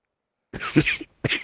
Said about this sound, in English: have, like, smoker's cough or something. Like, you good, man. Yeah, I'm good, man. It's just, cold weather. It's messing with me.